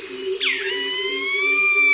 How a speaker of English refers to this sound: Jean Rocher recorded this dawn chorus in the jungles along the banks of the Kinabathangan River in Borneo.